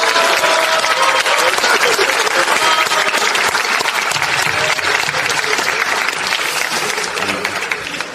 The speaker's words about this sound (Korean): 지금 다시 한번 네 그래서 제가 공식적으로 정말로 애쓰셨고 정말로 큰 성과 내셨고 앞으로도 민주당의 중진 원로 의원으로서 우리 당의 중심이 되어주십사라는 뜻을 담아서 큰 격려의 박수 부탁드립니다.